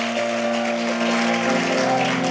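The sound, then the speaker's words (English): An audience applauds Dr. Mrs. Theodora Nyako steadily for a couple of seconds, a dense wash of clapping with sustained low musical tones humming underneath and no one speaking. “Are you clapping for her?”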